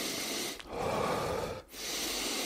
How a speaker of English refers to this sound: So I practice really deep breathing in through my nose, out through my mouth. I'll do that about 5 times. Very simply, I'll do it right now.